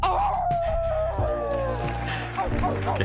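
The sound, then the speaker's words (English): A single wolf howl: one long, loud, wavering tone that slides slightly downward for about a second, then trails into rougher, lower-pitched noise. “I was just going to say, insert wolf howl here.”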